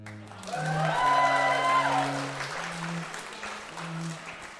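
An audience breaks into steady, sustained applause, a dense wash of clapping that swells and holds for several seconds while low, sustained musical tones play underneath, at the start of a new school year at Hogwarts School of Witchcraft and Wizardry, on headmaster Albus Dumbledore's cue.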